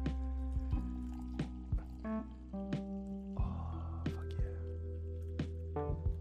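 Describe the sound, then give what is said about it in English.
Coffee is poured into a cup, with gurgling, splashy trickles and a few drips over several seconds. A brief exclamation from a voice cuts in partway through. “Hey y'all, let's pour this coffee real quick because, woof, I got some thoughts in my head.”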